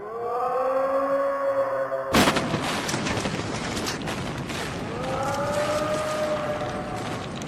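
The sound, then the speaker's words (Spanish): A wailing siren is cut off by a sudden, loud crash as a monster falls on a tower and it collapses, stones raining down in a dense, long crashing rumble, while the siren's wail gradually rises again underneath. “El monstruo cayó sobre la torre y la torre se derrumbó.”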